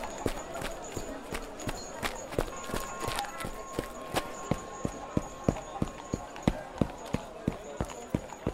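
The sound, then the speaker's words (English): Horse-drawn carriages clip-clop along a stone street made slippery by mud, dirt and horse dung, the hoofbeats sharp and steady in a quick, even rhythm. A faint street hum and murmur sit underneath. “There's lots of carriages in the street, and all the mud and dirt and, horse poop have made the stone road very slippery.”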